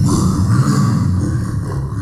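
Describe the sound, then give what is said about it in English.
A deep, rumbling grunt-roar of a female Yeti, sustained and loud for about two seconds, with gravelly low tones and a rough, growling texture that tapers slightly at the end. “I'm so sorry. I don't speak Yeti.”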